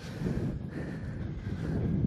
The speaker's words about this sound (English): It's very windy too.